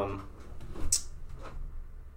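A door shuts with a single dull thud and a brief sharp click, muffled and slightly distant, set against a quiet room with low background rumble.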